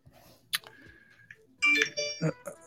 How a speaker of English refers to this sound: Yeah, I was playing some music and realized that I hadn't turned the Bluetooth thing on yet. So there should be a nice recording of phone connected on our tape.